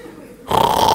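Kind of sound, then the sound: vocal imitation, imitated snoring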